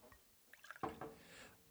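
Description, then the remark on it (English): Mankato Brewery Fresh Hop Belgian Style IPA beer glugs and splashes into a glass, a short burst of liquid pouring with a bubbly fizz trailing off, and no talking. “Love that pour.”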